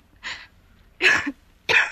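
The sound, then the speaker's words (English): A woman coughs lightly three times, short dry bursts spaced about half a second apart, fairly soft, with no talking around them. “It's just a little cough.”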